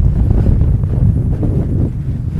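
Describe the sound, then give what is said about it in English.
A strong gust of wind buffets the microphone, producing a loud, continuous low rumble and roar that stays steady for a couple of seconds with no voices. “There's another gust.”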